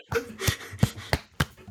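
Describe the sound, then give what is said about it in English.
A rapid, uneven series of six sharp, punchy thwacks made by mouth, imitating punches in a quick flurry, fairly loud with no talking. “I was trying to make punching noises.”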